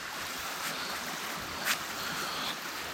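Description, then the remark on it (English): Lake waves wash steadily against a sandy shore at 9 p.m. in a continuous soft hiss, with one brief splash partway through. Nobody speaks, and the water sounds fairly quiet. “You can hear the waves.”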